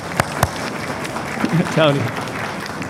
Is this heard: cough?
no